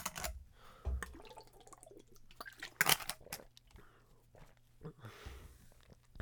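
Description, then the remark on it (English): Quiet mouth sounds of someone taking a quick drink of water: a few wet sips, a gulp and soft clicks of a cup or bottle, with no talking. “On the next note here, quick sip of water.”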